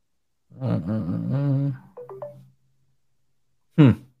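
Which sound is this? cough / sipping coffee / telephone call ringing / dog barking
telephone call ringing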